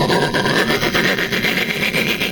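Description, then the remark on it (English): A train approaching: a loud, steady rush of noise with a fast, regular chugging pulse running through it, no voices present. “The sound of a train approaching.”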